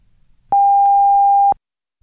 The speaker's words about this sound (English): Yep, now here comes the big one, the National Research Council official time signal. The beginning of the long dash following 10 seconds of silence indicates exactly 1 o'clock Eastern Standard Time.